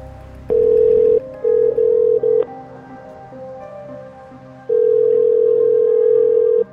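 A telephone ringback tone on an outgoing call to a woman: a steady electronic hum sounds in a few uneven bursts, pauses, then returns in one longer ring. It's clear, with no voices.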